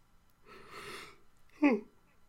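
A drawn-out breathy inhale followed by a short voiced groan that slides downward in pitch, a single yawn with no talking.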